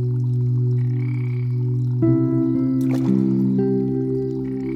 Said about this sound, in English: A bullfrog sounds a mating call, then splashes in the water.